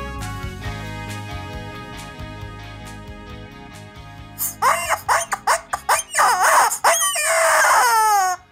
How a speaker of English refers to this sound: Chicken says, if I was in the Senate, I would have voted him guilty and impeached the leader. Yes, sirree. Because I think the rubber chicken's thinking of running for office. Oh, please, not now, rubber chicken,